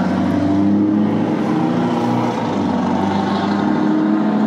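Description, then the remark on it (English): A loud car exhaust roars, a deep, throaty engine drone that holds steady with slight swells in pitch, filling the whole moment with no voices over it. “Yeah, those pipes were sick, dude.”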